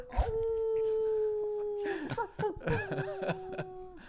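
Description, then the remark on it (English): A person imitates a dog, letting out a long, steady howl, then a second drawn-out howl after a brief break filled with chuckling and laughter, fairly loud. “At least give us a dog bark.”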